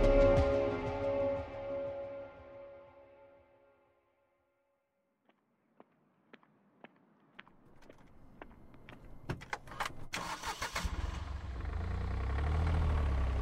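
A sequence of sharp clicks and rattles, like keys and a car door, gives way to the engine of a rented four-wheel-drive car starting up and running with a steady rumble, setting out for Giant Forest.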